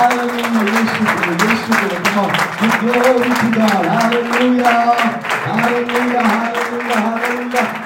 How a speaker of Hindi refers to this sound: आइए जोरदार ताली यीशु मसीह के नाम।